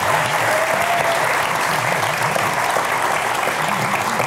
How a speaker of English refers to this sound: I was gonna say, why don't we all give all five of our speakers a big round of applause. Thank you.